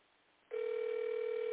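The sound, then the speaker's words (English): An outgoing phone call's ringing tone, calling a woman who may not answer, kicks in after a brief quiet moment, a steady, loud electronic buzz heard through a narrow telephone line and held without a break to the end. “I know she might not answer my phone call.”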